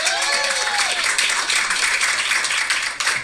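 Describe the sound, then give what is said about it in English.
A crowd at a magic show bursts into sustained applause for the show's sponsor, The Bridge Youth and Family Services, dense overlapping claps filling the whole stretch at a steady loud level, with a few faint whoops or voices rising briefly at the start. “Let's hear it for them.”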